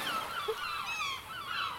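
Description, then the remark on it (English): A royalty-free seagull squawk sound effect: seagulls squawk in a dense, overlapping chorus of harsh, wavering cries that fill the whole moment, loud with no pauses between calls. “like, seagull squawk sound effects right about here.”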